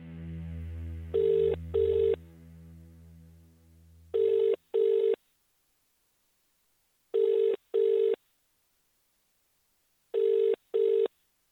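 A telephone dials and then rings in a repeating double-burst pattern, four pairs of bright buzzy rings spaced evenly, with a low steady tone underneath at the start. No voices.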